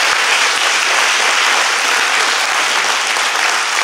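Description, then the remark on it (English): An audience at Live Talks LA applauds George Will steadily, a dense, loud wash of many hands clapping at once with no pauses and no voices audible over it. “George Will, everybody, how about a nice round of applause?”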